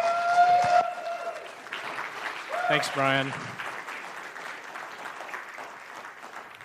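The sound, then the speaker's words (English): An audience at a church service claps steadily for several seconds to welcome the assistant pastor who will give the message, a dense, even patter of many hands. A brief tonal note rings out at the start, and a man speaks briefly over the applause. “And so why don't you put your hands together and welcome”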